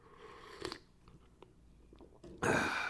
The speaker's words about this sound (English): Slurping on a coffee. Black Nescafe. One Stevia sweetener.